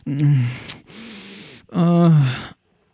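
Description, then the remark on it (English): Loud deep breathing in three long pulls: a voiced, gasping draw, a steady breathy exhale, then another drawn-out sighing breath before it falls silent, as someone tries to control their breathing. “Are you trying to control your breathing again?”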